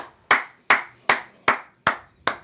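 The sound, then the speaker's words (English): Six sharp, evenly spaced hand claps ring out at a steady, unhurried beat: applause at a Joe Biden speech after his line that people had been sentenced to over 890 years. Each clap is crisp and loud with a quick fade, and no voices are heard. “And his clap line was, we've sentenced people to over 890 years.”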